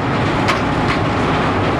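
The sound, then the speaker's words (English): Heavy coal-crushing machinery at the Black Mesa pipeline works roars loudly and steadily, a dense grinding rumble with no pauses, briefly topped by a couple of faint hissing bursts, as giant swinging metal rods crush conveyor-fed coal into fine powder. No one speaks. “Inside the Black Mesa pipeline works, the noise is deafening. Coal comes in on long conveyors.”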